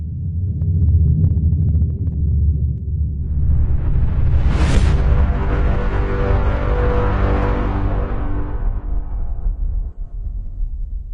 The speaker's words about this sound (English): The deep thrum grows, and then...